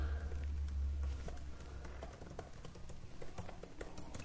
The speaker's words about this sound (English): I wonder if they can hear me typing on the... Probably.